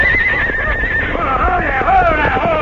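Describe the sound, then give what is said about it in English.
A horse whinnies loudly, a shrill, quavering neigh that wavers and trails downward over about two seconds against a steady rumble of background noise. “Climb down off that horse”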